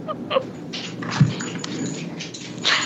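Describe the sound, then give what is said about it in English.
A dog moves about, with scattered short yelps and snuffling sounds mixed with shuffling and rustling, fairly quiet, and no one speaking. “tell that dog to stop moving around and holler so much.”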